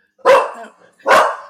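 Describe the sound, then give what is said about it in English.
Two sharp barks from a small dog outside, about a second apart, each bright and high-pitched with a quick attack, with quiet pauses between them. “Did we just have a little dog barking in the outside?”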